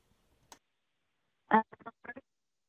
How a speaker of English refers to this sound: I'm sorry, you're breaking up. I can't hear you.